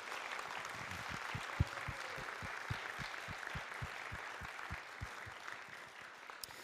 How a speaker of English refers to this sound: I'd like us just to give a huge round of applause and thank you to Julian